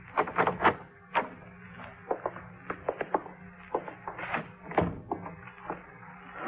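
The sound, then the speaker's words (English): The handle of Gorell's hotel room door at the Prince Hotel is rattled and tried several times, a string of sharp metallic clicks and clunks, followed by the latch giving way as the door opens. No voices. “Try the door.”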